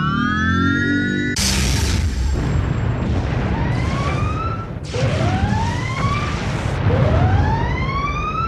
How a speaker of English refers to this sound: Can you please, please somebody turn the siren off, please?